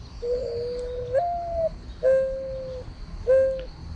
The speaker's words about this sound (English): Now, another bird that we hear a lot that people mistake for owls is the mourning dove.